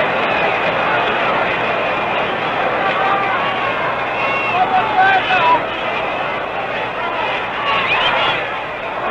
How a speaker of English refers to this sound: Strike one. Strike two. And the crowd is roaring with every strike thrown in by Ernie Johnson, who makes his winter residence here in Milwaukee.